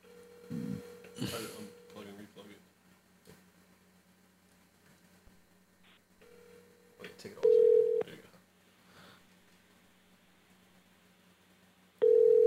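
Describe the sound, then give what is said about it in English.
A phone ringback tone sounds in steady repeating bursts of about two seconds with pauses between, the later rings noticeably louder, while muffled voices and background noise carry on underneath. “Is this ringing? Turn this up in there.”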